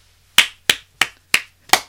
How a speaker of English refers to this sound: Can we add like that clapping sound effect?